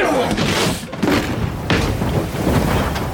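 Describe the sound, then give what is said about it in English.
An open window bangs in a gust, several dull, heavy thumps at uneven intervals over a steady rushing, roaring noise that fills the whole stretch. “A gust of air, that's all. The window. Someone must have left it open.”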